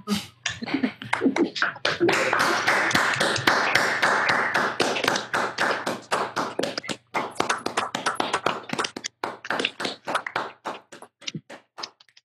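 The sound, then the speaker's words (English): A ragged round of applause from many people on a Zoom call clapping over their unmuted microphones, dense and loud at first, then thinning into scattered individual claps before fading out. “Maybe we could all unmute our microphones and just give him a round of applause and turn your volume down on your computer just in case it blows your speakers or something.”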